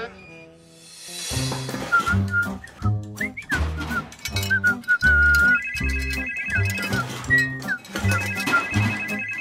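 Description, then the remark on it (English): A phone ringtone plays loudly and steadily, a bright electronic melody looping over a thumping rhythmic beat, with a soft swell of noise at the start. “Where's my phone?”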